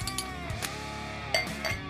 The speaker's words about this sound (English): All right, let's open beers. All right, here we go. Lots of bottles. Bottle day today.